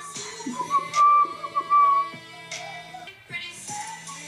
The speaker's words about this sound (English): Ooh! The whistles.